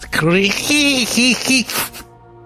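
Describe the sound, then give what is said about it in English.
A voice imitates a dolphin saying its own name, with a quick run of squeaky, warbling chirps that bend up and down in pitch, mixed with breathy hissing, for about two seconds. “That's his name, the dolphin.”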